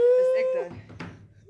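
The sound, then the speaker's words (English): A person in a studio imitates a wolf howl with a single steady, sustained vocal tone of just over half a second, fairly loud. A short stretch of talking follows. “Wolf ladies in the studio.”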